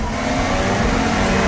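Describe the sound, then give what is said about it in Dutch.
A Formula 1 car's engine roars loudly, a dense, steady mechanical howl as the car accelerates off the start in a so-called cannon start, with no voices over it. “Dit is een zogenaamde kanonstart.”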